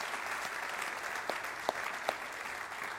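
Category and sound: crowd, round of applause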